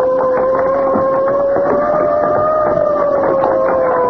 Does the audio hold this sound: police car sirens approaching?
yes